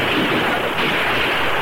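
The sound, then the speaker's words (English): A dense, continuous barrage of gunfire in a canyon, fired down from above onto Rangers who return fire from both sides of the canyon, rumbles steadily with no pauses, the shots blurring together into a loud roar with no voices heard. “So we'll just keep pouring lead into them from up here until we're sure they're dead.”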